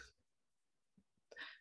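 A couple of sharp, breathy coughs: one brief burst at the start, a quiet pause, then a louder, harsher cough near the end.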